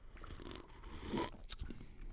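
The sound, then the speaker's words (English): Soft sipping of a grape-flavored seltzer: a couple of brief wet slurps and mouth noises in an otherwise quiet moment, with no one talking. “Well, we should sip this.”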